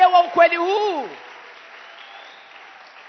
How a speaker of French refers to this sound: Je pensais que cette vérité, même si elle est connue, je pensais qu'elle serait accueillie avec des ovations, avec des clameurs, avec des acclamations.